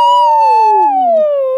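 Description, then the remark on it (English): A voice imitates a whale call: one loud, drawn-out moaning tone that slowly slides downward in pitch for about a second and a half, with no other talk. “Whale noises!”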